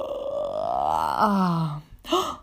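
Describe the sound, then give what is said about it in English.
A voice performs a long, exaggerated morning yawn, rising in pitch and then sliding down into a deep drawn-out groan, ending with a short breathy sigh. Fairly loud, with no other talk. “And he stretched his big wings and he had a big morning yawn.”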